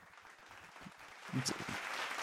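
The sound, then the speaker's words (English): A few scattered, slow hand claps start things off, then more people catch on and join in, and the sound swells into a fuller, steady round of applause by the end. “It was like one person clapping. It was almost like a slow clap.”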